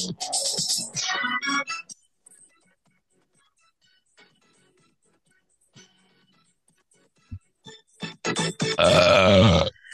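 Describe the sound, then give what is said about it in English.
A loud, drawn-out burp, with a second long, rumbling belch near the end separated by quiet stretches and a few faint clicks. “I really apologize about that burp.”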